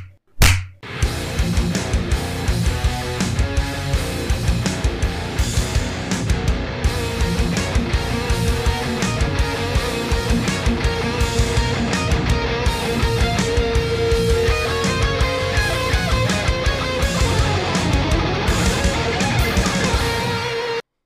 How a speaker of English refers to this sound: And you have just listened to our new intro. That freaking slaps.